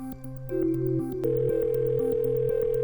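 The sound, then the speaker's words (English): A telephone ringing tone plays after Johnny Depp dials the number of his lawyer Camille Vasquez, a steady electronic hum that shifts pitch partway through and then holds, loud, with faint rhythmic pulses underneath and no voices. “The phone rings at Camille Vasquez's, referred to as Johnny Depp's star lawyer by the media.”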